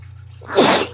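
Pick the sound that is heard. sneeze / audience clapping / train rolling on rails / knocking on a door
sneeze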